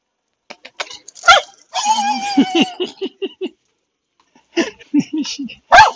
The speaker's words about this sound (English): Hey, there's a little dog.